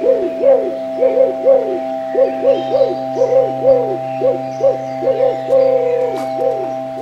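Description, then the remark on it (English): A hoot owl hoots in a rapid, steady string of short, rising-and-falling calls, fairly loud, over a constant low background hum. “His larger brother, the hoot owl, startles and almost frightens.”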